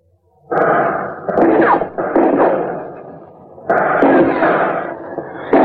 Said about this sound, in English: Through the roof, Alcatraz guards and Pacific veterans of the United States Marine Corps drop hand grenades.